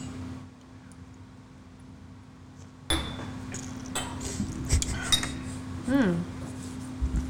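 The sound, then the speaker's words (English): Glasses clink together in a toast, a few sharp, bright taps amid rustling and handling noise, with a low steady hum underneath and a brief vocal sound near the end. “Cheers. The last one we did. Bottoms up.”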